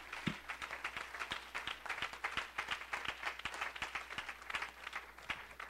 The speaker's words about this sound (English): And I wonder if we can clap our hands one more time before we're seated.